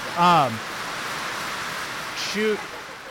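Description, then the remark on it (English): Heavy rain pours down in a steady, dense hiss that fills the whole clip, with two brief snatches of a voice rising over the downpour. “It's loud. We got a little rained out here and caught up on our beer intake.”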